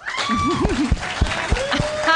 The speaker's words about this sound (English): It's good. It's good applause.